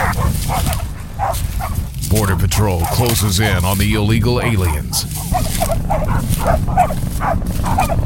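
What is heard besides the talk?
dogs barking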